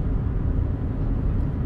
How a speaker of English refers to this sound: Running into some traffic.